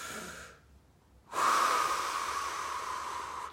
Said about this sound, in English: People don't know how to breathe. Breathing from the chest. Breathing deep into the stomach.